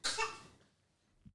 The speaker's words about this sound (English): an opinion in the background. He was like, cough, cough, you know, like adding this in.